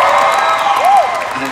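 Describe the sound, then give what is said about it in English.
A crowd applauds and cheers in a steady, dense wash of clapping, with a single high whistle-like whoop rising and falling partway through. “I don't hear so much applause from the voice directors.”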